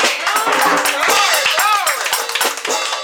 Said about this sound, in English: In the name of Jesus, we thank you right now, O God, for every hand clap, O God. For every praise, O God, to lift up the name of Jesus.